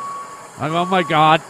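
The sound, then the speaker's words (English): A voice imitates a cement mixer truck engine with three loud, buzzy vocal bursts rising in pitch and growing louder over about a second, as if the truck is rolling closer. A faint steady tone hums underneath. “Here comes the truck.”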